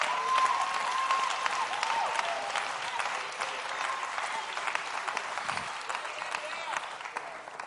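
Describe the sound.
An audience claps their hands in a dense, steady wash of applause that holds loud throughout, with a brief high tone or voice rising above it near the start.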